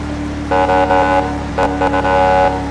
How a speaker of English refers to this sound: Oh wow, the horn sounds more like a civilian horn. Wow, impressive.